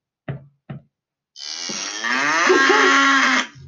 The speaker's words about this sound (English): Need a cow noise, darling. A cow noise.